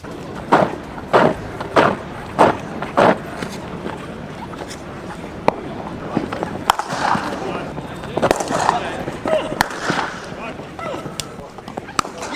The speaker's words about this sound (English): So what this is for the bewildered is cricket nets. Okay. Oh. Okay. Someone practicing in cricket nets, just to be very clear.